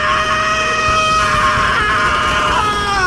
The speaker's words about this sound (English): The interior of the Zephyr exploded with the sudden scream of Gregor Roginski, who bolted up from his supine position, ripping off the wires and sensor pads that connected him to the medical bay.